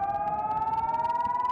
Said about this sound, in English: First, initiating a siren in the area, then launching a rocket that flies directly towards the incoming missile and detonates when it's near it.